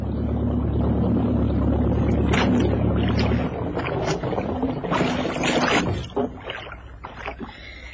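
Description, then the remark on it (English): A boat's motor drones steadily and low for a few seconds, then is cut so the boat drifts in the swell, leaving irregular water slaps and lapping against the hull as it rocks. “Okay, I'm going to cut the motor now.”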